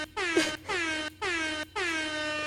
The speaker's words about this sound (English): Oh, wait. Hold on. I got to hit the air horn, too. My bad.